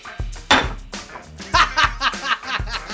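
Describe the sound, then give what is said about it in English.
A ceramic dish is slammed hard against a table several times in an uneven rhythm, each strike a loud clattering knock, with snickering laughter mixed in. “I'm slamming it against the table.”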